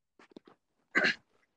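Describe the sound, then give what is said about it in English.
A few short throaty rasps lead into one loud, harsh burst of throat clearing, followed by faint breathy sounds; no words are spoken. “Intensively clears throat.”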